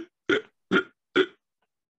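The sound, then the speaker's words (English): Three short, abrupt burps that catch like hiccups, evenly spaced about half a second apart, fairly loud, with another one just beginning at the end, from a person hiccuping and burping at the same time. No talking. “And, like, I burped. It was like a hiccup and burp.”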